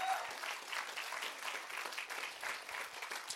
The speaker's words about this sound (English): We're going to do something that we've never actually done before, and we're going to have a service wholly given to baptizing 5 people. Yeah, let's get a round of applause.